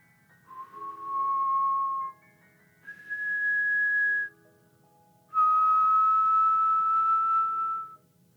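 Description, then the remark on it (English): A man whistles a slow tune of three long, steady notes, each held for a couple of seconds with short pauses between, clear against a quiet background. “He quickly closed the door behind him and stood facing Edward, whistling.”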